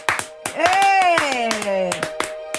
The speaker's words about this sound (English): Too much clapping is going on. This audience needs to quiet down. Too excited for this official Dungeons & Dragons podcast.